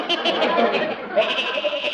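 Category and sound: animal, goat bleating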